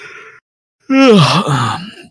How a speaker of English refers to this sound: In fact, when the elevator doors open, so is her mouth, because she's giving a big old yawn as she strides in.